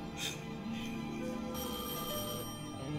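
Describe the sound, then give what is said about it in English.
A telephone rings with loud, repeated bell-like trills, prominent, set against a dense, steady wash of other sound that never drops out. “Answer that phone.”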